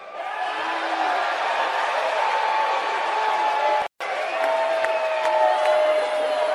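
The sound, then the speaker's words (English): A press conference audience cheers loudly in a steady, dense roar of voices, with whoops rising above it. The noise breaks off for an instant midway, then resumes just as full. “And look, the fans in the audience just eating it off the platter, man.”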